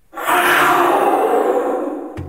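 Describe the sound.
A voice shouting through a conch shell produces a single loud, raspy roar lasting about two seconds, imitating a jaguar, then tapering slightly before a brief low thud at the end.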